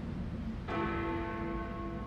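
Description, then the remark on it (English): A church bell playing a tune strikes with a sharp onset, its rich ringing overtones sustaining and slowly fading over a low background rumble, with no voices present. “Instead, the song the bells play also serves as the tune to a short song made up by my mom.”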